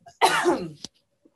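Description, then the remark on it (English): A single loud, harsh cough with a raspy throaty tail and a brief click as it ends, followed by near silence. “Very quickly, as I cough.”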